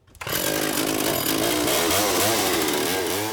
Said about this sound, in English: Randy Gauthier would rather forget some of those early creations when he first took up chainsaw carving.